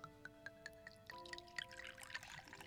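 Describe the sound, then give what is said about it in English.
A drink is poured into a glass, a soft, dripping, gurgling stream whose ringing tone steps higher as the glass fills, with no voices. “Now pour me another.”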